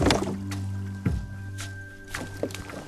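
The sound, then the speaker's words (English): Paddles of 20 women in a 40-foot dragon boat splash into water in a loose, repeating rhythm, roughly every half second, with a steady low hum running underneath. No one speaks. “They take 20 women in the boat to paddle the boat, and they're fantastic.”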